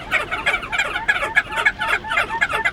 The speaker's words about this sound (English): This little seabird takes its name from a comical crest curling out over the top of its large orange bill. If that's not whimsical enough, crested auklets bark like chihuahuas.